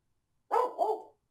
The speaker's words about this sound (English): Studio dog giving us trouble. Studio dog. Poor baby. Poor baby.